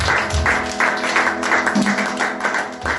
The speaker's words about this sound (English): I want us to begin to clap for the Lord. Amen. Amen.